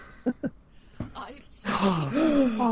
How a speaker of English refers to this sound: gasp. With an F-bomb.